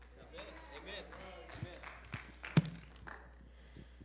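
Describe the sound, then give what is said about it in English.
Three sharp hand claps ring out roughly half a second apart, the last one loudest, over a low murmur of voices. “Notice three hand claps happened when I said that.”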